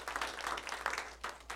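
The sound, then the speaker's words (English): An audience claps together for the teachings they have just heard, in a dense, steady patter of many hands, fairly soft overall with brief surges, and no voices standing out above it. “I am happy to hear these clap for teachings.”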